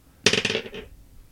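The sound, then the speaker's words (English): A d20 die clatters across a hard tabletop in a quick burst of bouncing clicks, tumbling for about half a second before settling. Fairly loud, with no voices. “You want to roll a d20.”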